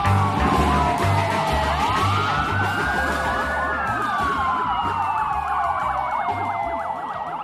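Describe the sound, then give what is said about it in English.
Sirens of several police cars wail loudly, their rising and falling tones overlapping as the cars pull up, with a low engine rumble underneath and no voices. “The paramedics arrived just as the Good Samaritan was finished cleaning up Miles' powdery mess. Several police cars pulled up as well.”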